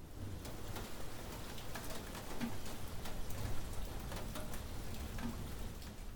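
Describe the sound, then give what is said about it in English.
Steady spring rain in central Ontario patters down with a continuous hiss and scattered sharper drips, while a bird coos faintly in the background. No one speaks. “I don't know about where you live, but this spring in central Ontario, it's been raining constantly.”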